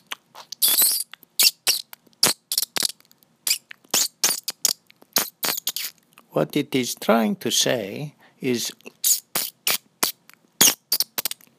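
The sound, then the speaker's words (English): Rapid, high-pitched bird squeaks and chirps repeat in sharp bursts throughout, with a man speaking briefly in the middle while the squeaking continues around him. “talking to a strange bird.”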